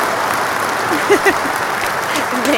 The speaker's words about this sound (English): You know what? Let me give you a motherfucking applause real quick.